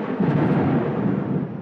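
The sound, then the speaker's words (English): A low, steady rumble of thunder on a stormy night, late at night, rolls on without a break, heavy, filling the whole moment with dense storm noise and no voices. “Where can ADA Berger find counsel and advice at this time on a stormy night?”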